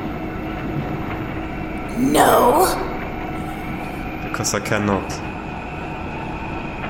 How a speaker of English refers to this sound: Sounds of cycling and whirring faltered and slowed. The machines abated.